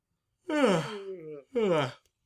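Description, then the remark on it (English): A person lets out a drawn-out, breathy yawn with a sliding, falling pitch, followed by a shorter second exhale, fairly loud with no talking around it. “But anyway, it's so I did like a very naturalistic yawn, you know.”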